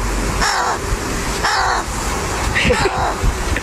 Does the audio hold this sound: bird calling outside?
yes